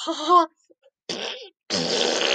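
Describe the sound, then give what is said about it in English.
Three loud fart noises in quick succession, short sputtering bursts with brief gaps, the last one longest and raspy, mouth-made like a voice imitating farts, as a joke about farting into a car's tank. “You know, you just fart into the tank, and then, you know, your car's ready to go.”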